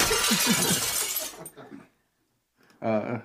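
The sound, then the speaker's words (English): A loud glass-shattering sound effect triggered from a button crashes and scatters for over a second, trailing off into a few tinkling fragments before a voice starts talking. “have one hand on a glass trigger.”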